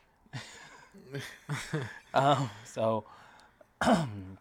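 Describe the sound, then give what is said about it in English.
Someone coughs and clears their throat after smoking, in a series of rough, raspy bursts, about seven in quick succession with short pauses between, some louder and more strained than others. “Each cough is like a light year away.”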